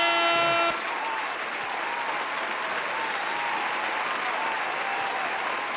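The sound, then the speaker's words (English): A short horn-like toot opens, then loud, steady applause from a large crowd fills the rest, dense clapping continuing without pause and no voices standing out. “Now, there's many reasons that we deserve a round of applause.”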